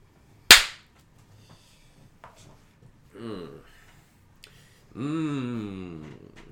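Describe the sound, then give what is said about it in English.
A single loud, sharp hand clap rings out once and decays quickly, followed by a few moments of quiet and then people talking. “Let me clap.”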